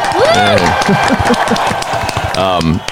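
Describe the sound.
An audience breaks into steady, dense applause lasting about three seconds, with loud whoops and cheering voices rising and falling over the clapping.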